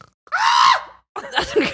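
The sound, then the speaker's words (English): A person on a couch imitates a snore like a goat from the Grinch: a strained, bleating vocal sound lasting about half a second, followed after a short pause by a rougher, wavering snort-and-groan. “Just trying to come up with different snores.”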